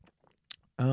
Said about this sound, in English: I'm going to take a sip of coffee.